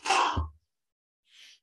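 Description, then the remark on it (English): A single loud sneeze: a sharp breathy burst ending in a low thud, then silence and a faint brief sniff about a second later. “I'm able to mute myself before I sneeze.”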